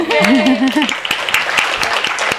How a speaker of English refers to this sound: And can we get another round of applause for those wonderful essays? Thank you.